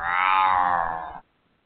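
A single long, drawn-out cat meow, loud and close, holding a steady strained tone for just over a second before cutting off abruptly into silence.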